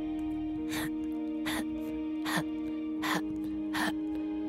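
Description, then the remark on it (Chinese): A person imitates a pet white rat's labored, abnormal open-mouthed breathing: five short, raspy gasping breaths at a steady, even rhythm, moderately loud over a constant low background hum. “然后我躺一躺就听到一个很异常的呼吸声，我模仿给你们听哦。”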